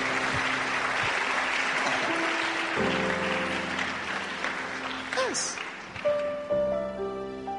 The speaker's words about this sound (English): Founding members, sit down. Membros fundadores, sentem-se. Clap for them. Palmas para eles.